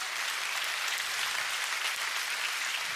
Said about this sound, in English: Come on, don't hold back. We're clapping for his glory.